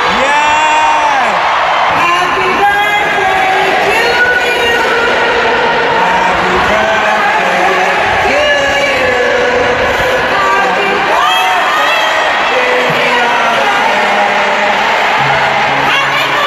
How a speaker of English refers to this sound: At … show, … actually came out on stage on … birthday on Monday night. And then she led the crowd in singing Happy Birthday.